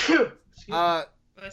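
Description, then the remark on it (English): A single sharp, breathy sneeze bursts out, followed by a short voiced vocal sound and another brief utterance after a pause. “Bless you, my child, for you have sinned.”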